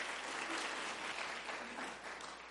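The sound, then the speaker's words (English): An audience at a library public program claps steadily, a dense wash of hand claps that holds fairly even throughout, easing slightly toward the end. “You can clap. Feel free to clap.”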